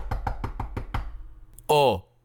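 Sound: knocking on a door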